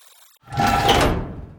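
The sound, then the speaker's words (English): A door is pulled open: a rushing scrape with a faint squeal, about a second long, fading at the end, with no voices. “but right now, I just need you to open up the door.”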